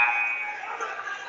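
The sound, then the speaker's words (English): A referee's whistle for a traveling violation in a Hastings College women's basketball game gives a brief, shrill, steady tone lasting a fraction of a second, then fades into a constant murmur of crowd noise. “has whistled the extra steps.”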